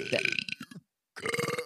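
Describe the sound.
A loud guttural burp drawn out and voiced almost like speech, an attempt to burp "hey, you guys" from The Goonies, rumbling in two stretches separated by a brief pause.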